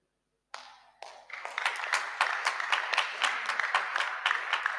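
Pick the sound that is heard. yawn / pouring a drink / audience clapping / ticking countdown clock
audience clapping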